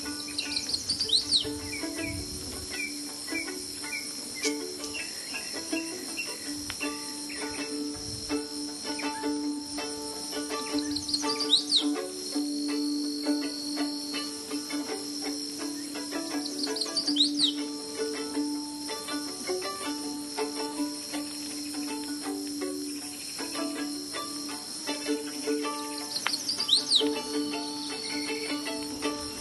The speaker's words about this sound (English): Farther along, where there are dogwoods and berry bushes, we hear a similar song with a downward curl at the end. Sweet, sweet, sweet, I'll switch you, seems to say. This is the chestnut-sided warbler.